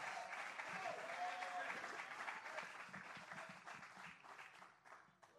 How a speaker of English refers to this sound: Can somebody give the Lord a hand clap of praise here this morning?